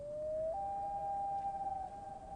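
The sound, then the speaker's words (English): A common loon's wail: one long, eerie, pure tone that steps up in pitch early, then holds steady and mournful for about two seconds before wavering slightly. No voices. “And then another bird that's very popular in this area are the loons, the common loons.”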